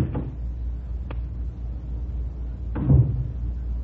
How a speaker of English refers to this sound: Lydia showed up while I was still fumbling with the door.